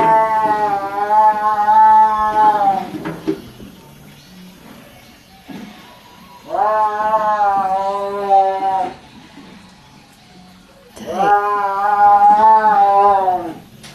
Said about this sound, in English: And there were rows of cages and tigers pacing back and forth and yowling. Have you ever heard a tiger yowl?